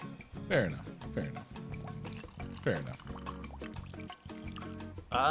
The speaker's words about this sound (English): Hopefully some of that came through. A little bit of liquid pouring ASMR for all you folks out there. But it's a nice golden straw color.